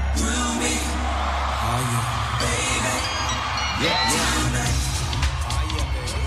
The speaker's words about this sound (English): And now, he's watching as the crowd at the L.A. Coliseum go off.